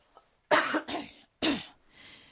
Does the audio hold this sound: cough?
yes